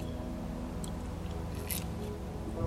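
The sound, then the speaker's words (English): A quiet sip of coffee, with a couple of brief wet slurping and mouth noises over a steady low background hum; no one speaks. “Now, I'm going to grab a sip of my coffee really quick.”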